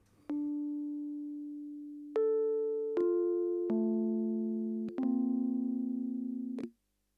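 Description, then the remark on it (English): A Rhodes-style electric piano synth patch, played on a keyboard connected to a computer, plays a slow run of five or six sustained notes and chords, each with a bright struck attack and a mellow, slowly fading tone, with no voices. “Now that sounds like a Rhodes electric piano to me.”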